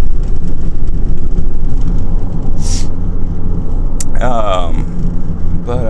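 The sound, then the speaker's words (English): A pickup truck engine drones with a heavy, steady low rumble from inside the cab as the truck, while being driven, struggles and fails to accelerate; a brief hiss and a wavering whine rise partway through. “Truck not wanting to accelerate was concerning.”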